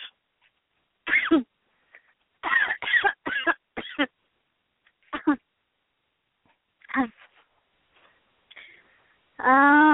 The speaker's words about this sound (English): Oh, dear. I have a cough. Oh, dear. I didn't mean to seem less than enthusiastic, but being that cheerful makes me cough worse.